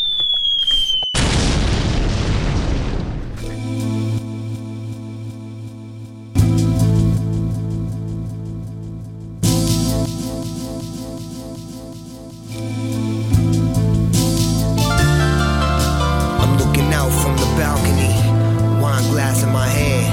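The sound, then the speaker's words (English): A falling whoosh and a booming burst open into loud, continuous instrumental music played as a break on Bang Radio, with heavy bass and layered sustained tones, which shifts sections several times without any voices. “With that being said, let's cut to some music.”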